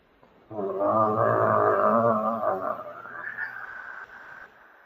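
Deep, rumbling growls from somewhere in a warehouse swell in together and overlap into a loud, dense chorus for a few seconds, then thin out into a quieter, trailing snarl.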